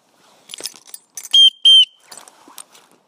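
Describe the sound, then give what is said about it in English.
Two sharp, loud blasts on a real whistle, each about a fifth of a second with a steady shrill pitch, separated by a brief pause, amid faint clattering and handling noise, blown by someone walking along a road. “I gave up practicing whistling because I used a real whistle. Let me see if I can use it again.”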